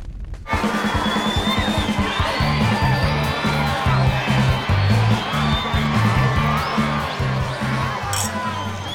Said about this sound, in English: There's the sound of partying and the buzzing and the skittering of very large scorpions moving to and from the punch bowl.